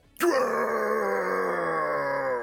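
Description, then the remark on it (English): A person lets out a long, loud roar with their voice, one sustained growling cry lasting about two seconds, strong from start to finish. “He does a roar. He does a big roar.”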